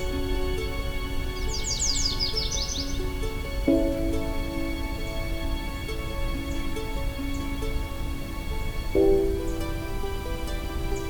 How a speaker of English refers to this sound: After the credits, the rest of this episode will be a long listen of this myrtle warbler.